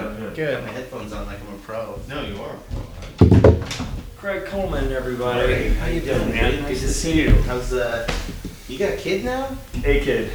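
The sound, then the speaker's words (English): A studio door opens with a short, solid clunk partway through as guests enter, while several people talk and greet each other around it. “That's the purpose of the ghetto door.”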